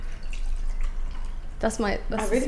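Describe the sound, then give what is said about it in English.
Water is transferred by pouring into a mug, a short gurgling stream whose tone climbs as it fills, fairly loud, following a quiet, hushed stretch. “Should I transfer my water? That? Yeah. I think so. I've got one as well. Oh, okay. We'll put our water in there.”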